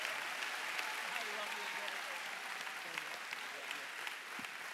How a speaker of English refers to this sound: Come on, keep that round of applause going for King Jesus.